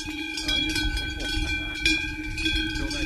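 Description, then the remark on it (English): Several cowbells on a herd of grazing cows in the Alps, at about 2,500 metres, clank and ring together in an irregular, overlapping, steady jangle, with a low outdoor rumble underneath and no voices. “If a stranger comes into the herd, then the cows will immediately know, because the bell will be different.”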